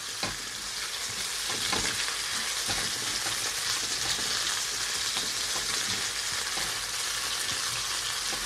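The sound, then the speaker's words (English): Chicken sizzles steadily in hot oil, a dense crackling hiss with scattered pops, while a utensil scrapes and stirs through it at irregular moments. No one speaks. “We're just going to keep stirring it a little bit longer.”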